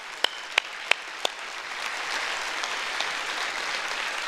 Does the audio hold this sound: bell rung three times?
no